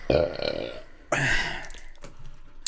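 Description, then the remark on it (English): A loud, drawn-out belch after drinking a Monster energy drink, rumbling out in two long gurgly surges with a brief pause between them, followed by a short tail of quieter throaty noise. “That was a terrible burp.”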